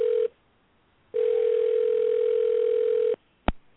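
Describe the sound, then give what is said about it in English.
A steady telephone line tone at the start of a Roy Wood Jr. prank call on Soul Kitchen Radio sounds briefly, pauses, then hums again for about two seconds before cutting off, followed by a single sharp click. No one speaks. “right now we're about to go into this prank call”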